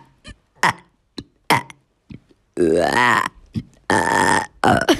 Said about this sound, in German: Sie sagten ja und alle rülpsten gleichzeitig und es stinkte etwa dann noch eine Stunde danach.